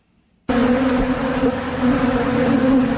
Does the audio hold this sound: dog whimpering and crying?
no